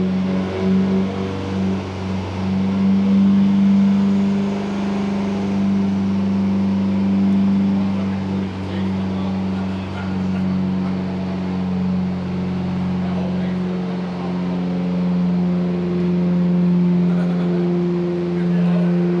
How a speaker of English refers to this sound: So you got to slowly ease out of the throttle, and those downshifts hurt